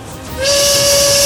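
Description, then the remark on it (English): A whistle is blown in one long, loud, steady blast, a sustained shrill tone with a breathy hiss, starting abruptly and held to the end with no talking. “Never mind the whistle.”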